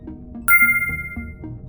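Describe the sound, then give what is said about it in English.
A single bright electronic chime from a computer system rings out and lingers with a clear, ringing tone, sounding over a low, pulsing background hum. “The system goes silent for a moment. A new voice chimes out.”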